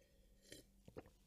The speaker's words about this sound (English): I'll have a sip of water here before I keep going.